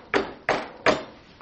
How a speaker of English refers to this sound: There's a story of a sheikh who was giving a talk to a group of his disciples, dervishes, and a man came knocking on the door.